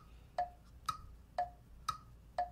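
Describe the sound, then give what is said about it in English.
A game show countdown clock for the final round ticks steadily, five crisp ticks about half a second apart, alternating slightly higher and lower in pitch like a tick-tock, clear with no voices. “Clock starts when I finish my first thing.”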